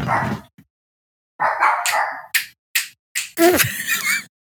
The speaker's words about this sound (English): Oh, my dogs are barking.